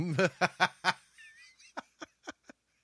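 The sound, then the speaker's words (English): A voice mimics a clucking hen: four loud, throaty bursts in quick succession, a brief warbling tone, then a few sharper, quieter clucks trailing off. “Cluck cluck, bitch.”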